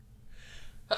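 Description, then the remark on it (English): A single sneeze: a soft, breathy intake builds for a moment, then ends in one sharp, explosive burst, with no talking. “Bless you.”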